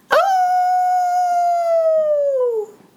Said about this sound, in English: The wolf began to howl.